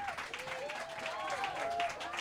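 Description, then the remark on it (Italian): A crowd applauds steadily, a dense wash of clapping at an even loudness, with a faint pitched tone and murmuring voices sliding along underneath. “questo è l'applauso del volume di Firenze.”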